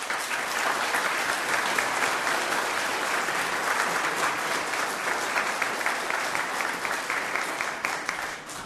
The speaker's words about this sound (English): I think your mums and dads and your families want to give you a wee round of applause at the end of the Mass as well.